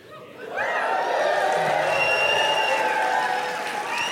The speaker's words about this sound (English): That wasn't a prompt for applause. That's me softening the blow.